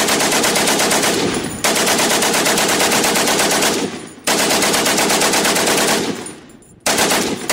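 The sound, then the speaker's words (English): Loud, sustained machine gun fire from Turkish machine gunners sweeping across no man's land, in long, rapid bursts, the rattling shots blurring into a dense roar that cuts off briefly between volleys before starting again. No one speaks. “Turkish machine gunners lit it up like a wildfire. A hailstorm of rounds hissed through no man's land.”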